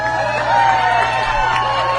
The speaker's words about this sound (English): Now, I want to pause it there before he goes, what I mean is, why did the audience cheer?